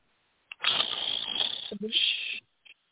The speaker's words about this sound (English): What is that noise? Wake up. Snoring, oh, geez. Was somebody snoring over here?